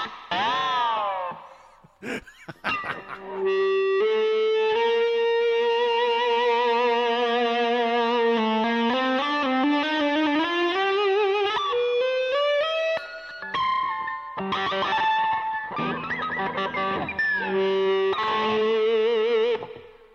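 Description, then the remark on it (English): An electric guitar with just one pickup, not a neck pickup, droning with EBow sustain, long smooth notes that swell and glide between pitches, heavily processed with effects, bright harmonics, continuous and loud with brief pauses near the end. “Thing is, with an Ebo, you really should be using this with a neck pickup.”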